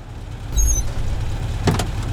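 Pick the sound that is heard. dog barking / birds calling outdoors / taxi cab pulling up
taxi cab pulling up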